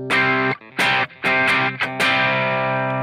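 Electric guitar through a King of Tone overdrive pedal in OD mode, played into a clean amp tone, plays a few loud, gritty chords in quick bursts separated by brief pauses, with the final chord left ringing and slowly fading.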